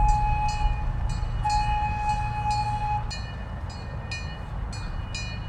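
A train rumbles past a park, a heavy low roar under regular clacks of wheels over rail joints, with a steady horn-like tone sounding for the first few seconds before cutting off.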